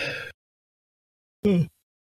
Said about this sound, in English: pardon me, I had to yawn.